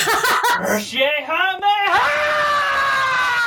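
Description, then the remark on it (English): A single voice lets out a loud, wavering yell that swoops in pitch like a rowdy cursing yeehaw, imitating Jesse Eisenberg screaming into his phone at Superman, then stretches into a long, strained scream that holds steady to the end. “I might as well just like share my synopsis of this movie, which I'm just imagining Jesse Eisenberg like screaming into his phone at Superman doing a curse yeehaw meha.”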